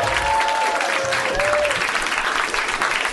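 A roomful of people applauds steadily, a dense, continuous patter of clapping that stays loud and even throughout, with a brief faint whistle-like tone near the start.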